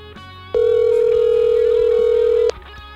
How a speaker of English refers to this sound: We're going to get Higgy going on the phone. All right. Ooh, ring it